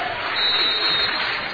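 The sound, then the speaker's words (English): A basketball crowd in Bolivar cheers and claps during a game, with the score 41-40 and 1 second left in the half, in a steady, dense roar that holds fairly loud across the whole moment, with no single voice standing out. “Crowd into it here in Bolivar.”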